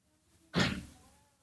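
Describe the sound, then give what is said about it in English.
A door opens with a single sudden clunk and a brief rushing fade afterward as someone comes in, with no one talking. “Someone's always at the goddamn door.”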